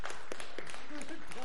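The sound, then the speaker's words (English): Scattered, uneven hand claps from a small group after a prayer, brief and fairly soft, mixed with murmuring voices and a few rising vocal sounds. “You can clap.”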